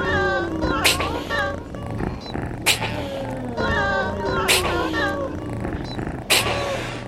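Repeated cat meows, some drawn out and wailing, layered over a steady music groove with a low bass line and a sharp percussive hit roughly every two seconds.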